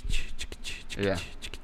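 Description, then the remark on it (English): A singer's acrylic fingernails scratch and clack against each other in quick, rhythmic, shuffling bursts, crisp, with a short voiced tone briefly rising underneath; the nail rhythm was recorded as a credited musical part on an album. “with her acrylic fingernails, and that's actually cut on the album, and she has a musical credit on that album of nails”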